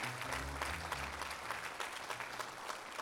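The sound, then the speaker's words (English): An audience applauds the day's guests steadily, a dense wash of many hands clapping at once with a few sharper claps standing out, holding an even level throughout. “Come on, clap your hands for all of our guests today.”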